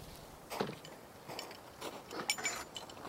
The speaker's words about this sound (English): You're hearing the squeaks of your crampons digging into this, like, creaky, squeaky, cold snow.